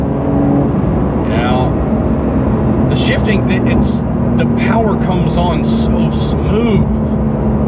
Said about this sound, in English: shifting is smooth. The car just tucks down and moves. And it doesn't pull either way. It's just like straight. Yeah, I mean, it is very easy to control and comfortable.